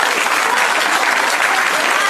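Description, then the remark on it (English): Sustained audience applause, a dense, steady wash of many hands clapping at an even loudness throughout, with no pauses or voices standing out. “So the applause goes on, and she finishes up brilliantly.”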